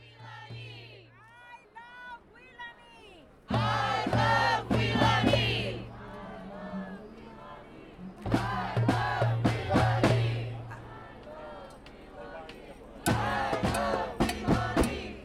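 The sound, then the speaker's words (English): A large protest crowd shouts and chants in loud, ragged bursts as armed riot police confront it with tear gas, attack dogs, clubs and ballistic shields, voices overlapping in a tense outdoor clamor, with a steady low hum underneath and sharp spikes of yelling rising and falling. “Despite numerous stated commitments from religious leaders and city officials to honor the right to protest, armed riot police terrorized the crowd with tear gas, attack dogs, clubs, and ballistic shields.”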